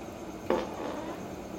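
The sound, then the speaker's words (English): A single short fart, a quick burst that fades almost at once, against a quiet background with no one talking. “That was a real fart.”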